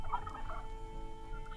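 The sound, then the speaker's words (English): A wild turkey gobbles once in the turkey woods on a crisp fall morning, a quick, rattling, mid-pitched burst, then a fainter call follows near the end over a low, steady background rumble. No one speaks. “Senses taut, attuned to the serene harmonies of the turkey woods.”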